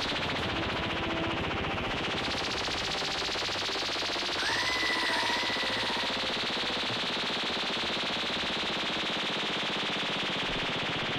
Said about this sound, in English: Steve got a laser gun, and he will not take his hand off the trigger until we get 100,000. I won't stop firing it in the direction of all of the people in your banquet hall.